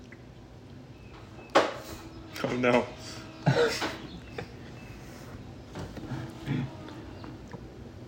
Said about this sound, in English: the coffee machine's making noises